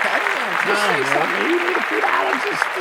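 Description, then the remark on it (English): A steady wash of clapping from a group, celebrating a haircut, runs for about three seconds at even loudness, with voices calling out and talking over it throughout. “Oh, clap that up.”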